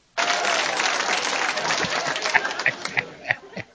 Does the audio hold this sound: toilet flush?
no